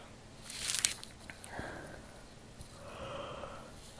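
A single yawn close to the mic. It opens with a sharp breathy intake, then stretches into a faint, drawn-out voiced exhale that fades away, with no talking.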